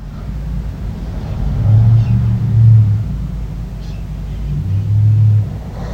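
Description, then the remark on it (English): A low, rumbling car engine hums steadily, rising into two louder revving swells, one lasting about a second and a later shorter one, with a deep droning tone and no speech. “So I'm hearing the vroom, and then I hear a...”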